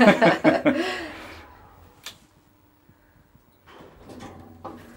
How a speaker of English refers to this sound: The door opens.